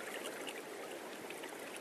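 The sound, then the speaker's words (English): Steady rushing of flowing river water in a national park in America, whose waters lead on to the Missouri and Mississippi and the Gulf of Mexico; a continuous, even wash with faint bubbling detail, fairly soft and unbroken throughout, with no voices. “So you could get on a boat, sit here in a boat, and end up in the Gulf of Mexico at New Orleans if you so desired.”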